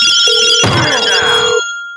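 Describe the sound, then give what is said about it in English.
A loud telephone ring sound effect, triggered by pressing a phone button, plays alone, a bright, metallic trill that swells in the middle of a brief two-second burst and then cuts off, leaving a faint lingering tone. “I don't know why I hit the phone button.”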